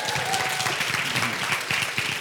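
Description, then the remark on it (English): An audience claps steadily, a dense, even patter of many hands holding at a moderately loud level throughout, with no voices rising above it, as the speaker's wife comes up to help with the morning's message. “Why don't you guys give her some applause as she comes up?”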